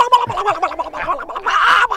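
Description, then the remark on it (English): A voice imitates a turkey's gobble: a loud, rapid, warbling throaty burble that runs for about two seconds, with no other talking. “Gobbling like a, howling like a stuck turkey.”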